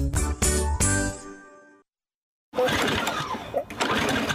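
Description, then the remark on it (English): A small lawn mower gas engine sputters unevenly in a few rough, choppy bursts, cuts out briefly, then coughs back into a ragged, struggling run. No one speaks. “I have put up with this stupid lawnmower barely running all season.”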